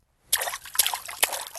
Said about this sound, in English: Do you remember me? Splash three times if you do.